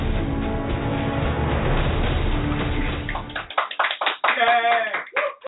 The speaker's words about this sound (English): Welcome, listeners. They're not applauding for me, by the way. They're applauding for the food.